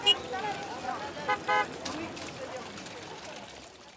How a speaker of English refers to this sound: Cigarette smoke from the café swirls in there too, along with the clamor of voices and trickling fountains and tiny dogs and honking Vespas.